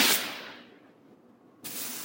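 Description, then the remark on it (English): Two broad, hissing swishes of a broom, the first fading out slowly and the second starting abruptly after a quiet pause, with no voices. “The soft rhythmical music a sweeping broom makes is reminiscent of an earlier time when noise pollution was limited to bike bells, penny whistles, and occasional sonic booms.”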